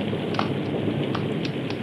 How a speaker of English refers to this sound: It led them to Phillipsburg, but just as the lights of the town came into view, lightning flared across the sky, thunder crashed, and a torrential wind-driven rain lashed against them.